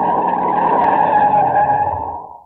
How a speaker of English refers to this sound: We're coming to another turn. Okay, now brace yourselves. I'm shutting the brakes on hard.